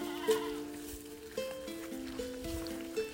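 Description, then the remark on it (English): Several goats bleat in drawn-out, overlapping cries that shift up and down in pitch over a faint outdoor background with no one talking, at a local family's house at lunchtime. “Listen carefully to the goats.”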